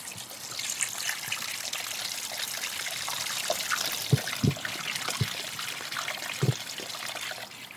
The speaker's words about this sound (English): Here we go, there's a little stream. So it's just coming down as we've walked straight down this path. It's going slightly downhill. And there's just this overflow of water which has just cut through the bank and is just going into this bridge now.